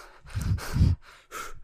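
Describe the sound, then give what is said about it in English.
Someone clears their throat in a few short, rough, gravelly bursts, two rumbling pushes followed by a brief pause and a lighter final rasp, with no talking. “Clearing my throat, I'd like to make a statement.”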